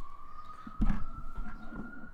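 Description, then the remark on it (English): An ambulance siren holds a steady, slowly rising wail out on a New York City street, with a burst of low traffic rumble and city noise swelling underneath partway through. “You're can hear the ambulance in the background because we're clearly killing the game.”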